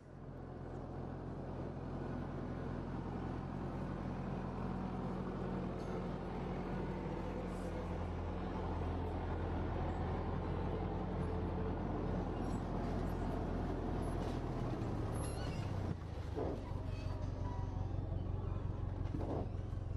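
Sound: tractor engine running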